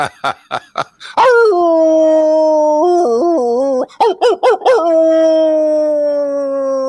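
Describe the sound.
A man imitates a wolf, starting with a few short sharp yips, then a long, loud, sustained howl that wavers, breaks into choppy yelps, and settles into a steady drawn-out tone.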